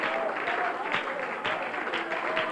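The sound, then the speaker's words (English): A crowd claps and applauds steadily in praise of the Lord, a dense wash of many hands with voices mixed in underneath, sustained and fairly loud throughout. “Give the Lord a good hand and clap of praise.”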